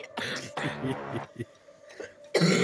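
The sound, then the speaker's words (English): A loud cough comes in several harsh, breathy bursts, a couple of longer hacking fits followed by shorter coughs, ending with one more forceful cough. “Same time with a cough.”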